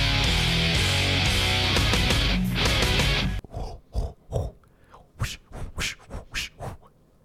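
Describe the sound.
A voice imitates basketball court squeaks with a quick run of about eight short, shrill squeals, following a few seconds of dense, loud noise.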